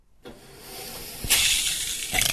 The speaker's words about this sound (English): This is the shower in my house. It's only steps away from the bedroom, and if I don't overindulge in the snooze button, I get to use it pretty much any morning I want.